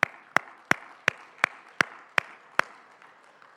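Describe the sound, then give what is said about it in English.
Eight sharp, crisp claps land in a steady, even rhythm, about three per second, then stop. The claps are moderately loud, with no talking. “Yeah, we should clap.”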